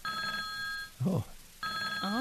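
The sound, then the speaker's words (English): A telephone rings in two sustained electronic bursts separated by a short pause, loud, with a brief voice sounding in the gap between the rings. “Yeah, can you get the phone? Screen the call.”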